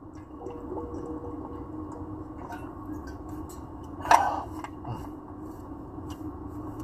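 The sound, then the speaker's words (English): A low steady hum, broken by a single brief slurp of someone sipping water, followed by faint small swallowing and mouth sounds. No one speaks. “Drinking that good water.”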